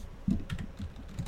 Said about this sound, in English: I'm typing a Discord message.